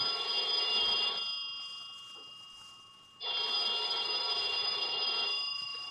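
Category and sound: household object, telephone ringing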